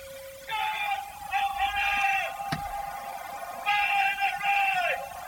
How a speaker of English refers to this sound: So that is... That wasn't the bell, that last bit. That was a shouting man. Shouting man.